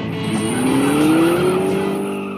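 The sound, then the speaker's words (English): A racing car roars with a dense engine drone as a single long tire squeal rises steadily in pitch, lasting about a second before fading back into the engine noise. “Well, and just like that, the sound of racing cars, and here we are into Civically Speaking.”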